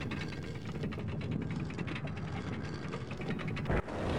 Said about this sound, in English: It seemed I didn't really have much of a say in the matter, so I relented and, helping Challenger with the heavy door, stepped inside the dark chamber.